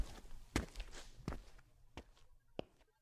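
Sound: footsteps walking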